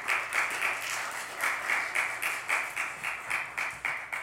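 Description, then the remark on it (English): A crowd applauds steadily for several seconds to welcome a guest speaker, a dense wash of many hands clapping with a loose, pulsing rhythm and no voices over it. “I would like to welcome her with a warm applause.”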